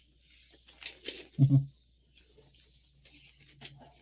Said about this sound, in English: Having fun with that steamer, bud? We're steaming. You gotta hold the switch to steam.